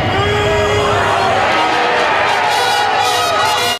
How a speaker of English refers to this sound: There's quite a few people booing. Yeah. And then they were getting wrestled down by the cops.